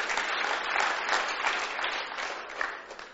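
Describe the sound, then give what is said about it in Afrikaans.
A church audience claps for the Lord in a steady, dense wash of applause that stays fairly even throughout, swelling slightly in places before easing off toward the end, with no voices standing out. “Sonder Jesus is daar nie hemel nie, kom aan, hy is die enigste weg, waarheid en lewe, kom aan, klap vir die Here, hy is die enigste redder.”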